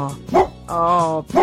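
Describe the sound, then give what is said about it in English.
A Labrador, a failed guide dog, barks loudly: a short yelp, then a longer, drawn-out whining bark, and another sharp bark, with no talking. “Pixie the Labrador. This Failed one here. Guide dog.”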